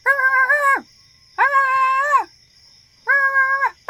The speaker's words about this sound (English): In the distance, you hear the dog barking at the gate.